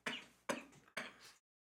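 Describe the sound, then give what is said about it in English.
Three harsh coughs in quick succession after laughing, fairly loud, each a sharp burst that trails off, followed by silence. No one speaks. “Sorry, I've got a little cough if I laugh too deep.”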